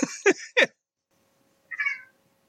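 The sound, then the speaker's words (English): A cat meows several times: two or three quick, strained cries in a burst, then a short pause before one more softer, higher meow. No one speaks. “Was that a kitty?”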